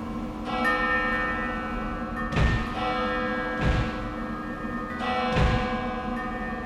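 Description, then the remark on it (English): A clock strikes twelve with deep, resonant bell tones, about four slow, evenly spaced strokes heard, each leaving a long humming ring that carries into the next. No one speaks. “Perhaps we will find out more when the clock strikes 12.”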